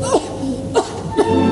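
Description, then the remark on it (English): The character Mimi in Puccini's opera La Bohème, first performed in the 1890s, coughs three times, short breathy bursts spaced roughly half a second apart, over a soft, sustained orchestral backdrop. “If someone coughs like that in an opera that was first performed in the 1890s, you can bet they have the consumption.”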